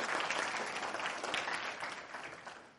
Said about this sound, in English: They did a great job on that, but I'm clapping for the resurrection. Amen. That's worth clapping about. Amen. Let's give it another round of applause.